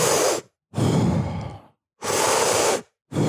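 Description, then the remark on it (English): Forceful, deep breaths of Wim Hof breathing drawn in and pushed out in a quick, steady cycle, each one loud and airy, with brief silent gaps between them and no talking. “If you remember, the Wim Hof breathing is 40 deep inhales.”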